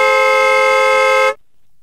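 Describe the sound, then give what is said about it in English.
A single loud, sustained blast from a car horn (hooter) being tried out, with a steady, bright harmonic tone, held for over a second before cutting off abruptly into silence. “This is a serious I'm not negotiating with you in traffic Hooter.”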